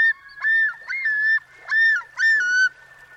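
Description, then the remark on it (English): A common loon calls in a loud series of four or five wavering, tremulous notes, each phrase rising and sustained at a steady mid-high pitch, with no voices present. “To hear a common loon in the wild during the summer, you'll need to find a northern freshwater lake where a pair is nesting.”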